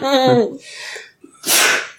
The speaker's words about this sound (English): Bless you.